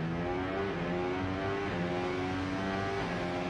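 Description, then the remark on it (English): Max Verstappen's racing car roars steadily and loudly around Silverstone while chased by a 320–330 km/h drone, its layered mid-pitched whine rising and falling slightly as it speeds along, with no voices over it. “Yes, that's Max Verstappen being chased by a drone. Yeah. And it's a 320 kilometer and 330 kilometer an hour drone.”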